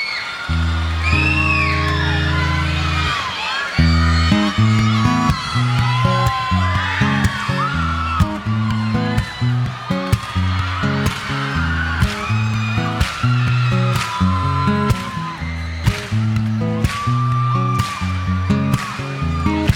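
A pop rock song kicks in with a full band: a pulsing bass line, steady drum hits and bright melodic guitar parts, playing loud and up close at a driving mid tempo.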